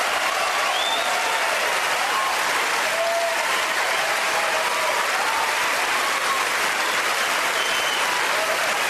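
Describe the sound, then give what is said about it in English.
A large crowd at the Oscars applauds loudly and continuously as the award goes to Roman Polanski for The Pianist, a dense wash of clapping sustained for several seconds with faint whistles and cheers rising above it. “That's the loudest applause I've ever heard at the Oscars for Roman Polanski,”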